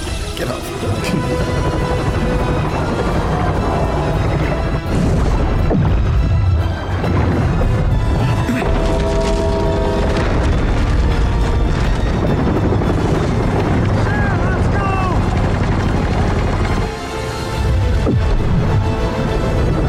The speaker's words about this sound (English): Cartoon sound. Like, yeah, you remember the cartoons where you say, "Fire the goddamn cannon." You remember that? Cartoons.